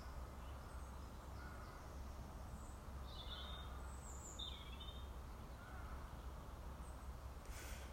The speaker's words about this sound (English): Sounds like the birds are heading into their evening routine.